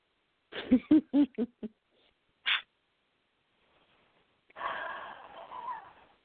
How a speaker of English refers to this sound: Funny bird, why are you screaming? I gave you cereal and pizza crust.